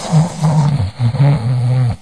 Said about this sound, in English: is snoring. I can hear him.